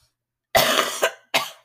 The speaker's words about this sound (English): My sincerest apologies, everyone, for that cough.